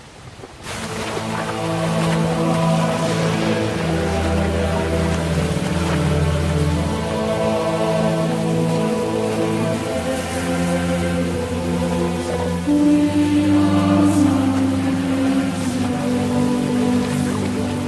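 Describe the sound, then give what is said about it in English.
Heavy torrential rain, depicting weeks of rain on the crusaders' winter road to Jerusalem, hisses steadily under sustained, swelling music, forming a constant wash of sound for the whole stretch with no voices. “Despite weeks of torrential rain, the devoted crusaders struggled on.”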